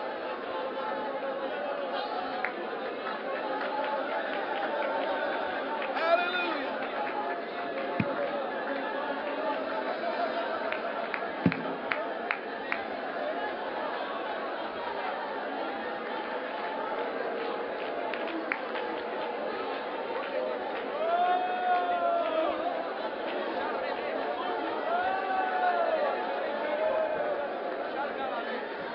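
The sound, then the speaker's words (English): An audience praying aloud together in the Spirit: many voices murmur and pray at once in an overlapping, steady wash of sound, with occasional louder exclamations rising above the crowd throughout. “Push just a little further to pray in the Spirit.”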